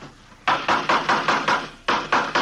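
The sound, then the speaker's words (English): A hammer knocks in a steady run of about six sharp, loud blows, pauses briefly, then strikes three more times at the same brisk pace, with no voices, as someone builds a coaster. “Say, would you hand me that hammer there, officer?”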